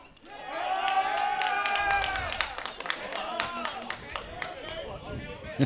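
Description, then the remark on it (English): Scattered applause from a crowd at a softball game as a player is checked on by coaches and turns out to be okay. A steady patter of claps lasts several seconds, mixed with voices and murmuring from the stands. “getting an applause from the crowd for being okay.”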